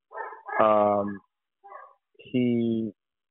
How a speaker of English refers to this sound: Can you hear my damn dog? Yeah. Yeah, we can hear your dog. Yeah, we can hear Butler. Yeah. Shout out to Butler. Shut him up.